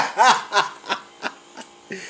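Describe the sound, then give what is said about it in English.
A refrigerator compressor, just switching on, hums low and steady in the background while a series of short, breathy snickering bursts sit on top of it, spaced out unevenly over a couple of seconds. “Well, it's my time, because my refrigerator just came on.”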